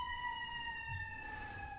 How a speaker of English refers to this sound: I called an ambulance in every city where you all live just to make sure one was passing at the exact time I needed it.